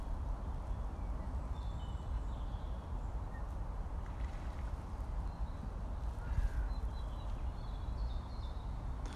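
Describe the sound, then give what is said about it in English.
Birds call sporadically, thin and faint, just before sunset, over a steady low rumble of water and a boat's engine that dominates throughout; no one speaks. “Feels like this is the final flurry of activity before sunset. The birds will be heading off to roost.”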